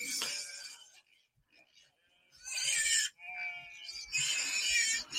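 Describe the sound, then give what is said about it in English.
Several loud, raspy goat bleats come in quick bursts, overlapping at times, with a short quiet gap after the first cry before the noisy calling resumes, from goats in a farm field in Punta Gorda, Florida. “Noisy guys, huh? That's the goat mafia right there.”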